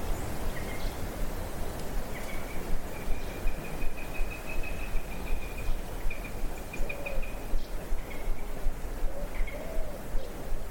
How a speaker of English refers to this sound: So that's the call of a sparrowhawk,